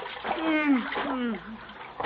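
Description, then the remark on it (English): Water splashing and sloshing for about two seconds as Gildersleeve, in The Great Gildersleeve, thrashes his way out of a full tub of rainwater he fell into, with a voice making strained sounds over it. “You fell in the tub of rainwater.”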